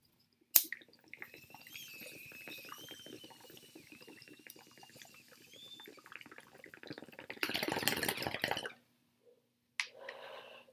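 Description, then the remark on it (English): A sharp click, then about six seconds of steady gurgling water bubbling from a bong as weed is smoked, with a faint whistling tone above it, ending in a loud breathy rush of air. “I'm actually about to hit the bong before we start out today, guys.”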